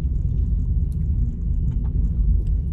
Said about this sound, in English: But, man, like... driving this car around is bringing back a lot of memories.